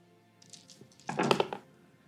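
Ten dice rolled together in a game rattle and clatter, a burst of sharp, overlapping clicks and knocks that builds quickly, peaks, then settles within about a second. No one speaks.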